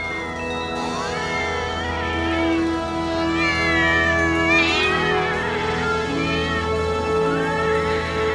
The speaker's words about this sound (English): Wait a minute, what? I didn't do any of this. Where did all these cats come from?